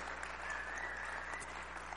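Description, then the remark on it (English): A crowd applauds its children and leaders, a dense wash of many hands clapping at once with no clear individual beats, sustained at an even level for the full two seconds with no voices. “round of applause to our children and all of our leaders.”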